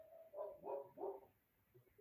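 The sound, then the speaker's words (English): A dog named Gunny barks three times in quick succession, moderately loud, followed by a quieter stretch with faint background noise. “Can you hear him barking?”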